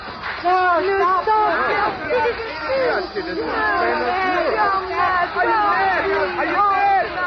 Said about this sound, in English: The crowd's gone nuts, but if they want a riot, they're going to get one.